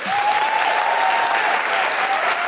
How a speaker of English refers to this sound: Well, big round of applause to Hannah Gousy.